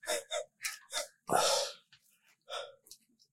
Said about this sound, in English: The heavy breathing is hilarious.